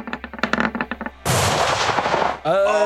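A gun mounted on the back of a vehicle, aimed at a monster, fires a rapid burst of about ten sharp shots, followed by a loud, sustained roaring blast, then a wavering, tonal whine at the end.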